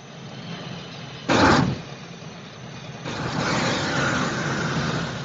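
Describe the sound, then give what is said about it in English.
The diesel engine of the armored 'dragon' vehicle on Crab Key in the James Bond film Dr. No rumbles steadily, broken by a short loud hiss of air, then the engine swells louder and throatier as it revs. “A dragon that runs on diesel engines.”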